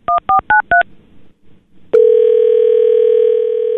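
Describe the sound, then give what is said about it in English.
Four quick touch-tone beeps as a phone number is dialed to call a mother on Mother's Day, a brief pause, then a loud, steady ringback tone hums on as the call rings through. No one speaks. “But this year my mom had other plans, so let's get her on the phone to find out what broke this 10-year tradition.”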